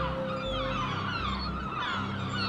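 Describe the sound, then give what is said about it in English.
A noisy flock of seagulls swoops and squawks continuously overhead by the sea, many harsh overlapping cries, fairly loud, with no voices. “Seagulls swooped and squawked overhead.”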